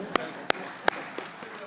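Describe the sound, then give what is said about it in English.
A brief, sparse round of applause during a sermon: three sharp, loud claps at a slow, even pace, followed by two fainter ones trailing off over a low background hum. “Let's give a round of applause for”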